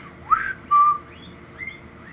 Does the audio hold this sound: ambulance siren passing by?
no